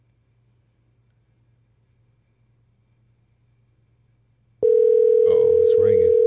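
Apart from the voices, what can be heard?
phone call ringing tone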